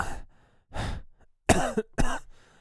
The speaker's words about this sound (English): Each of those coughs hurts you. Like, it's painful. Don't strain yourself.